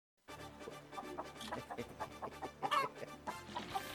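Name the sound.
chickens clucking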